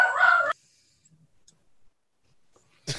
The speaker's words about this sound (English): As the GM's dogs start barking. Yeah, somebody came home.